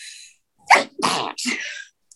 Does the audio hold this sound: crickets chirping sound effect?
no